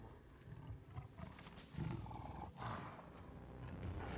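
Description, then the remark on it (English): A deep, rumbling saber-tooth tiger roar surges in waves over about four seconds, loud, with growling swells and no voices. “Oh, saber-tooth tiger.”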